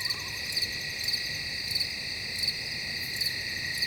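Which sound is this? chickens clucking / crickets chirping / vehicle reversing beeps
crickets chirping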